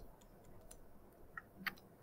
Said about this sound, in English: Yeah, where's that ticking coming from?